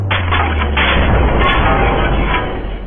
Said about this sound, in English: He opened up a trap door, and we fell into the pit. I fell into the pit.